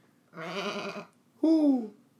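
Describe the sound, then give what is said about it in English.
Someone imitates a goat with two loud bleats: a wavering, trembling cry followed by a shorter, falling one, with no other sounds around them. “I don't know what sound a goat makes, but I'm trying to do”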